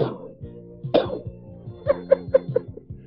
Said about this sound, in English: Only time I get up is to go out to the mailbox, wait for the mailman, and then when he gets there, I cough on him.